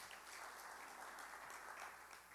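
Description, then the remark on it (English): A crowd gives the Lord a hand clap, applauding steadily, many hands clapping together in a dense, continuous patter at moderate loudness. “Anybody can give the Lord a little hand clap for that?”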